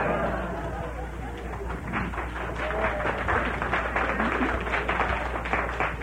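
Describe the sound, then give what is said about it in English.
An audience, applauding to vote on a question put by the host, breaks into reluctant, half-hearted applause: scattered claps that build to a steady, moderately loud patter of many hands, mixed with a low murmur of crowd noise. “Uh-oh, that was a sore head applause.”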